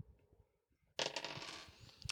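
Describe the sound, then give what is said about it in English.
Two dice rattle and clatter across a hard surface after a quiet moment, rolled for a game's brace-for-impact roll: a busy burst of small clicking impacts lasting about a second. “So give me a brace for impact roll. Two dice plus your armor.”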